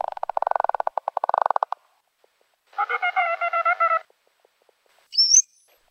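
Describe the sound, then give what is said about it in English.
A bottlenose dolphin's rapid train of echolocation clicks buzzes for over a second, then a pulsed, nasal burst call and finally a brief rising whistle, all clear with no talking. “Okay, now let's listen to the bottlenose dolphin. It also starts with echolocation, and then the other two registers.”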